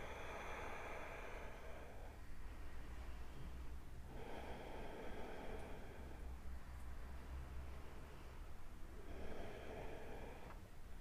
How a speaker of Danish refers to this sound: Tag tre dybe vejrtrækninger.